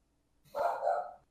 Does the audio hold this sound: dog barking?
yes